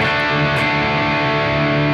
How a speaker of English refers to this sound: So for reference, that's what a real distortion sounds like. I didn't touch anything. This is just all knobs at noon on the Engel Savage 120.